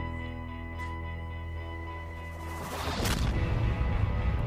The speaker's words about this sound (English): Explosion!